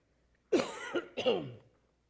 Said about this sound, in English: I want to apologize if I cough more often. My wife's been sick for a couple of weeks with a cough, and I've been doing good. This morning I started singing and I started coughing, and it ain't going away.